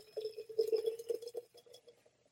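Beer pours into a glass mason jar mug: a steady, gurgling stream with a hollow ringing tone and light fizzing, swelling briefly and then tapering off over a couple of seconds.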